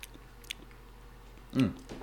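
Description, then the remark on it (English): Soft mouth noises of someone chewing food, with a few faint wet clicks, then a louder, fuller gulp-like swallow near the end. No one speaks. “I could already taste it before I swallowed it.”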